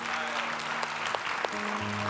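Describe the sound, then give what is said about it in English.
An audience claps their hands to the Lord after a prayer, in a dense, continuous wash of applause, steady, with low sustained musical tones humming underneath. “Let's clap our hands to the Lord today.”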